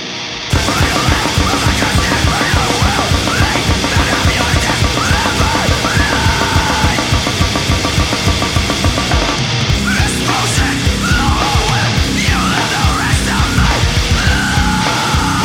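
A loud, dense heavy band song kicks in after a brief pause, with harsh screamed vocals over pounding drums and thick distorted guitars, playing continuously throughout.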